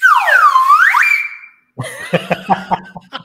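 A slide whistle glides smoothly down in pitch, then swoops back up to a sustained high note, loud and clear. After a short pause, a choppier, pulsing passage of sound follows.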